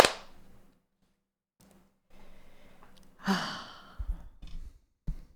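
human body sound, hand clap

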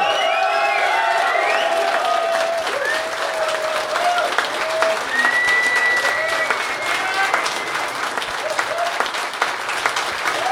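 crowd, audience applause and cheering

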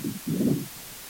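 nature, wind blowing into microphone

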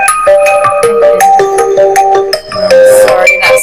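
signal or alarm, mobile phone ringtone

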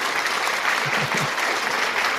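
crowd, applause

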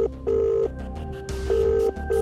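signal or alarm, cell phone ringing

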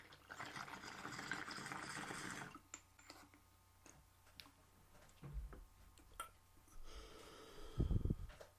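tool, bong hit

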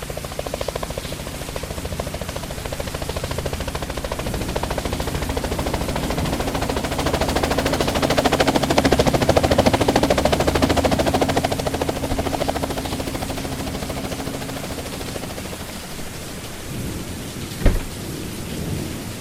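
vehicle, helicopter approaching and landing

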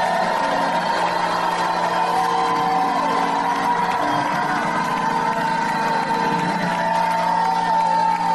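crowd, audience shouting and whooping

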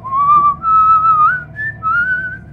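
human body sound, person whistling a melody

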